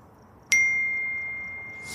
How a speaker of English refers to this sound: You get an automatic text.